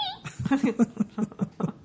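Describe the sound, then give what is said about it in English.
A person imitates a little cat's meow, the voiced mewing broken into several short, choppy bursts that sound close to laughter. “So you just hear the little cat. Meow.”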